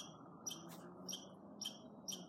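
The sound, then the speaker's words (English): Birds chirping: four short, high, bright chirps at a steady, even pace, fairly soft over a constant low rumbling background, with no voices. “Wow, the birds are really chirping.”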